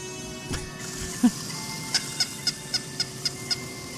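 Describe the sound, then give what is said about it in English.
A bouncing toy rabbit, a display piece in a toy store, squeaks in a quick, evenly spaced series of about seven high, short chirps, preceded by a couple of softer thuds and squeaks. “It was the squeaky squeak sound, yeah.”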